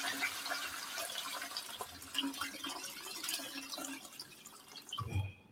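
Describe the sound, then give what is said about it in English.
A toilet flushes in a steady rush of swirling water for several seconds, ending with a short gurgling drain as it cuts off. No voices are heard. “You know, it feels good to flush these late in the season like this.”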